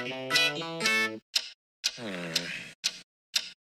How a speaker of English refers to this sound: Little MIDI music here.